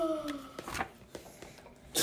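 A quick sneeze bursts out after a short drawn-in breath, followed by a few softer breathy rustles and another sharp burst of noise at the end.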